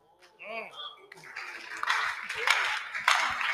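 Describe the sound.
An audience claps together, a dense wash of hand claps that builds steadily and grows louder, following a brief moment of a man's voice at the start.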